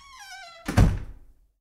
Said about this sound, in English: Let me just check the doors shut. Hold on. Okay.